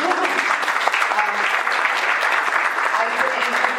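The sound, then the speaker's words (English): Steady audience applause at a Business Council and ESI event as staff are introduced, a dense crackle of many hands clapping at an even, loud level throughout, with a faint murmur of voices beneath. “I can start with the BDS, and they get applause.”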